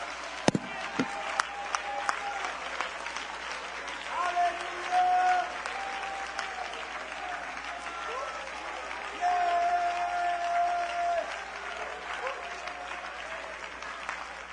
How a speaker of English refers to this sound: Oh, clap your hands and shout unto God with the voice of triumph.